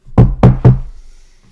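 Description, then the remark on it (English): Three firm, evenly spaced knocks on a wooden door, close and loud with a deep thud to each, followed by a brief quiet tail and a faint rustle at the end. “I am going to go up and knock on Bronwyn's door. So you knock.”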